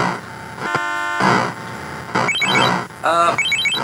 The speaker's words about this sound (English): I've only been playing Freeway a little bit, and although it looks really good, I like the traffic noises, add some realism there, but I'm already pretty bored.